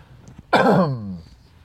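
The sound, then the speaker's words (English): A single loud throat clearing, a harsh voiced rasp lasting under a second that fades out, with no talking around it. “Sorry, let me clear my throat right here.”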